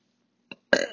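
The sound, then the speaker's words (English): A loud burp rumbles out after a brief throaty blip, a guttural belch that fills the last quarter second with no talking around it. “Ugh, I keep burping.”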